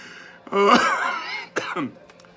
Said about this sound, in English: I had a pastor who used to think that every time somebody coughed, a little devil came out.